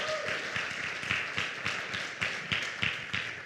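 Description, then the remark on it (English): A crowd at a second service applauds steadily to welcome guests, many hands clapping together in a dense, continuous patter with a few sharper claps standing out, warm and enthusiastic throughout without any voices. “Can we give them a huge, like, warm, enthusiastic welcome?”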